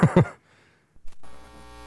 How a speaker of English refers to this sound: Oh, look at that hum.